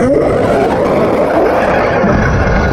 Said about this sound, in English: The thunderous roar came from within the crate and rattled the bowels of everyone in town.